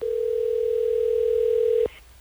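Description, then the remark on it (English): A steady telephone dial tone hums at a constant pitch for almost two seconds as radio hosts from Hot 101.5 place a call, then cuts off abruptly with a faint click, leaving quiet line noise. “Are you ready for us to get Renee on the phone?”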